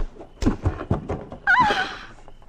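A scuffle of punches: three or four dull, heavy thuds land in quick succession, close by, like fists and a body striking the ground, followed by a high, strained cry.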